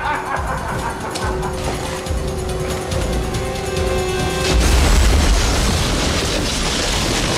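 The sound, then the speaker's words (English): A humming, mechanical drone gives way midway to a loud, deep boom, then a sustained roaring, crackling blast of big explosions that fills out the rest of the sound. “Because you did roll good enough, but these are big explosions.”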